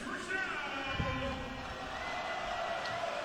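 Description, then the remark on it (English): A stadium crowd of football fans chants the Argos team chant after the PA announcer calls a first down, a steady roar of many voices blending into a sustained, droning call that runs unbroken and fairly loud throughout. “Fans are into it, as you can hear in the background with an Argos chant”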